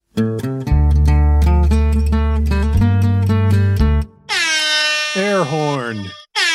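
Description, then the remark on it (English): Loud, rhythmic air horn blasts stutter for several seconds, then a voice imitates an air horn with a wavering, drooping wail that trails off. “These are funny to me because the air horns feel a little deflated today. The way I'm saying it?”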